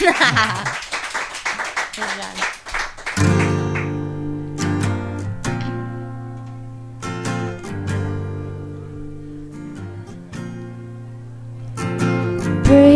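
An audience claps and cheers in a dense burst for about three seconds, then gives way to music with sustained, ringing chords and sharp plucked attacks.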